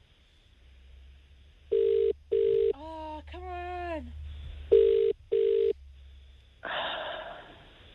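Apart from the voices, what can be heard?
outgoing phone call ringing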